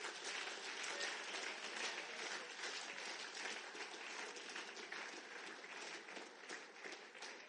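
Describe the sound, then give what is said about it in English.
An audience bursts into sustained applause for the missionary Adoniram Judson, a dense, steady wash of many hands clapping at an even loudness for several seconds, with no voices standing out. “Clap for Adoniram.”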